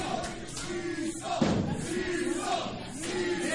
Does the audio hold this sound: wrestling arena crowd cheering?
yes